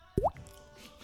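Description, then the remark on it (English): A single wet, hollow plop with a quick upward-bending pitch, a mouth mimicking a drop of water falling as ASMR, clear, followed by quiet background noise and a faint second click. “Water drops.”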